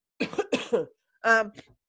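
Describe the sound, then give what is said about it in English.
A few rough coughs in quick succession from a person with a stuffy nose, followed by a short voiced, throaty sound and a faint final catch, all fairly loud with no talking. “So sorry for my stuffy nose and my coughing and all that.”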